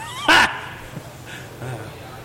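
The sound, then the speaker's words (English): A person imitates a cat meowing, giving a loud, sharp meow followed by a softer, drawn-out one, with a faint background hum between them. “And they'll be like, meow, meow, meow, meow, meow, meow, meow, meow, meow.”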